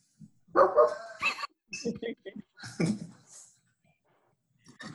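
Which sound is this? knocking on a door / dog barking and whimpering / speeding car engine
dog barking and whimpering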